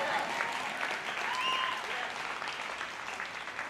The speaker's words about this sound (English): Somebody clap about it.